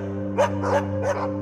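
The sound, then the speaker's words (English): A dog barks three times in quick succession, the barks sounding somewhat distant and muffled, over a steady low droning hum that continues throughout. “Maybe a dog barking in the distance.”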